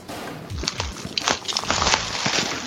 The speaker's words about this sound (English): So more bubble wrap